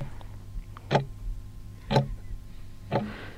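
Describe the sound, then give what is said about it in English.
A clock ticks three times, one crisp tick each second, fairly loud over a low steady hum, with no voices. “And dial the clocks back.”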